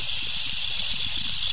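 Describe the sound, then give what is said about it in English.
A rain stick is tipped, giving off a steady, bright hiss of tiny pellets cascading, with a soft granular patter underneath that continues evenly without pause. No one speaks. “But it's a rain stick, right?”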